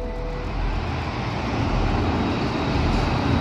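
A steady, loud roar of motorway traffic, cars whizzing past at 70 miles an hour, heard from the hard shoulder; a dense low rumble with hiss on top and no individual cars standing out. No one speaks.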